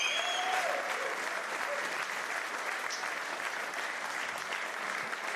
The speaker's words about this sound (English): Would you please give a very big round of applause to David Wallace and Conrad Smith.